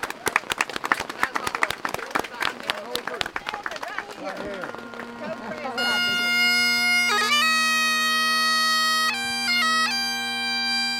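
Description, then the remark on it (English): A group gathered at a cemetery claps steadily for about five seconds for the women who started their annual visit 40 years earlier, a dense patter of many hands, before a bagpiper starts playing with a loud, sustained drone and a wavering melody. “I think we ought to give the ladies that started this a hand of applause.”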